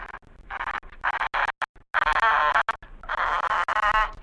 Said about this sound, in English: Whatever it was, apparently had reached the cage now, and Napoleon welcomed it with friendly chortling. The hair rose on the back of my neck. The bird was cooing and gurgling as it did when I, or Guildea, scratched the feathers on his head.